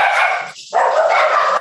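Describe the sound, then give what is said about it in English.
Several dogs bark loudly, their yaps overlapping into a dense burst, breaking off for a moment and then starting up again. “All right, Sigma dogs, settle down over there.”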